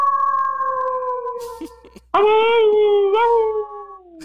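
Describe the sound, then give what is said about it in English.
A wolf howls in a long, steady, high-pitched tone, then a second, louder and lower howl starts abruptly, holds, and slides slightly downward as it trails off. “You're a lone wolf.”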